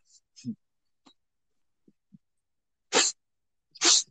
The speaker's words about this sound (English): You hear me sniffling? That's me sniffling, because I just a few minutes ago I got the most heartbreaking text of my life